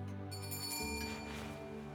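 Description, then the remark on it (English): A bell rings out with a steady, sustained metallic tone that lingers and shifts slightly partway through, filling the short moment without any voices. “That's the bell.”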